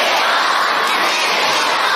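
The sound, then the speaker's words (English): An arena crowd at a refereed game shouts and roars continuously, wanting a red card shown, a dense wall of many voices yelling together at steady high volume with no single voice standing out. “But the crowd wants to see red.”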